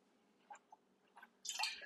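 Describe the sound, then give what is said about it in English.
A few small clinks and drips, then a brief burst of water pouring into a glass, fairly quiet, with no one speaking. “But let me get some water.”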